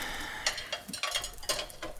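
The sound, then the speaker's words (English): Someone scrubs a greasy pan, a series of short, scratchy strokes in an uneven rhythm, fairly quiet and with no talking. “You gonna scrub a hole through that pan? It's greasy.”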